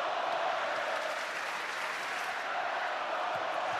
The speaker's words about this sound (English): Crowd getting a Let's Go Warriors chant here at Chase.